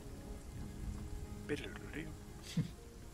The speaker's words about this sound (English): Is it raining? I can hear rain. It is rain. Not precisely canon that it's raining all the time, but I really like this music. I love it raining.